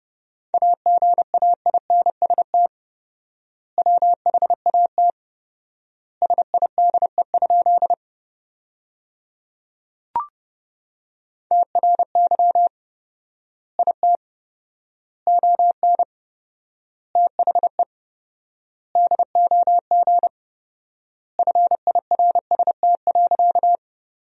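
Fast Morse code at 30 words per minute with fourfold word spacing, sending sentences from the top 400 words as a single steady mid-pitched tone, clipped dots and dashes bunched into words separated by long silent gaps, with one brief click partway through.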